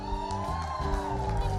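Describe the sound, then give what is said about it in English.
A church audience cheers loudly and steadily during birthday announcements, with whoops and shouts blending into a sustained roar throughout. “Well, he got a big cheer.”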